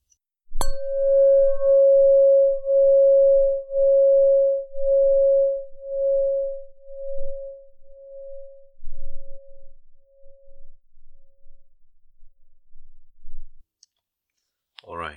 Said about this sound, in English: Bell.